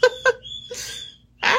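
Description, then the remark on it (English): A pet bird calls in quick bursts: two short, sharp chirps, a thin high whistle, then harsher raspy squawks, fairly loud with brief gaps and no talking. “oh, my bird is distracting me right now.”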